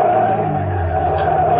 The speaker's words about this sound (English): Then I saw them in the mirror, the headlights sweeping up behind me. A car. It had come out of nowhere. It was pulling alongside, cutting me off.